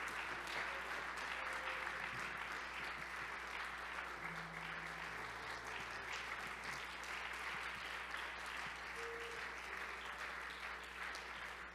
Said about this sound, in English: And we're so thankful that he's here. Could we receive him with a warm hand clap of appreciation? Amen.